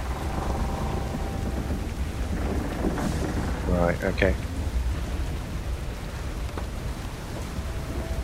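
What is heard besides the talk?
thunderstorm with heavy rain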